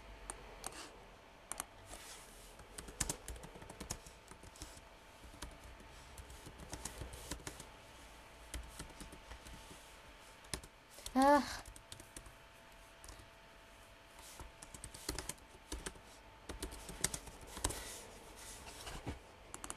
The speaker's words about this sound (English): Okay, don't mind me trying to spam click.